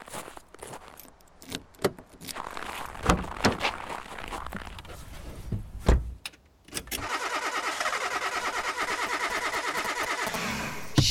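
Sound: truck engine cranking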